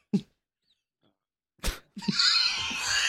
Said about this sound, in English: What the fuck was that? Like a laugh burp. God, I want that in.